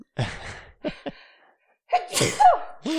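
A person sneezes from allergies, a loud burst followed by short catching breaths, then another drawn-out sneeze with a voiced, whiny edge after a brief pause.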